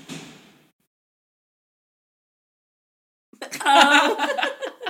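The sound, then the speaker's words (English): Dining room chairs are thrown onto the floor: after a brief fading noise and a quiet pause, a loud wooden clatter and scraping rings out for over a second. “No, he's throwing the dining room chairs on the ground, which is a lesson he's learning.”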